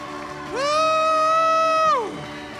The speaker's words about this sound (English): Come on, let's give Jesus the hand clap.